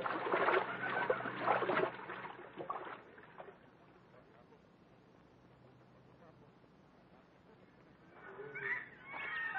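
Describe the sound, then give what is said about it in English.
People wade through a river, their legs sloshing and splashing loudly at first, then a quieter stretch of gentle water movement before more splashing and a muffled voice near the end. “We can cross the river here, Buona. It will not come above our hips.”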